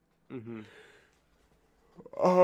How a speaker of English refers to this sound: Excuse me. Ugh, now that we're done yawning